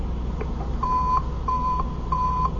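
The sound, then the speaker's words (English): A radio receiver, just switched on for a test, beeps in a steady rhythm: three loud, even electronic tones of mid pitch, each lasting about a third of a second, separated by short gaps over a low hum. “Once we get out in traffic, the signal is going to be a lot weaker.”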